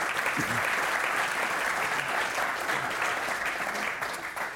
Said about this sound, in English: All right, that ends our lightning round. Let's give them a round of applause for getting through.